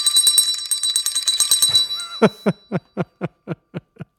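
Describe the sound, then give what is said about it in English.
A bell rings rapidly and insistently for about two seconds, then slows into roughly eight separate, evenly spaced dings. It is loud and has no talking. “Maybe if you throw the bell across the room at the wall, that might be the best the best way to indicate. Or maybe something a bit more urgent like this.”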